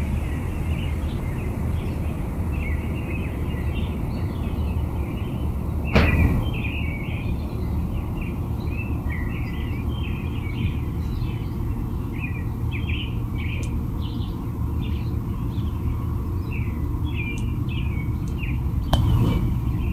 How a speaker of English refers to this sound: I get the American Robins. Do we have something else in the background, Rob? I only catch the American Robins. Yeah, I got several American Robins.